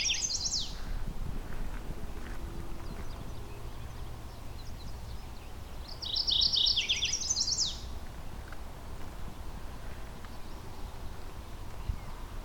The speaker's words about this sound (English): Mourning warbler. So now that the leaves are out, it's harder to spot these warblers.